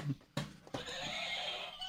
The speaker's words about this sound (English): The chicken still works, or the rooster. Oh, cock.